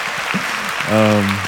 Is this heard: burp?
no